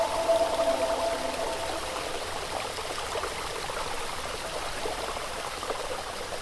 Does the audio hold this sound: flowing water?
yes